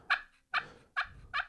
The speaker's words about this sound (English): I've got the slate call right here in the recording studio.